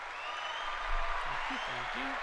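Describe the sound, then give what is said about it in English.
An applause sound effect played by the host for himself: a dense, steady wash of many hands clapping at an even level throughout, with a low muffled voice murmuring briefly in the second half. “Ah, plays a clap sound just for myself.”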